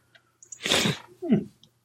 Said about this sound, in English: With a big snort, because I just sneezed off mic like 2 minutes ago.